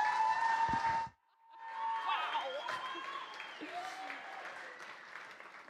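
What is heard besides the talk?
audience applauding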